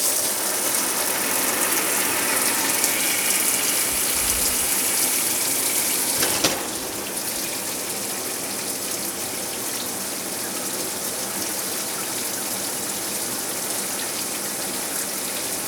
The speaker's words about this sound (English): To me, my morning shower sounds like this.